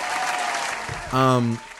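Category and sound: sound effect, hand claps applause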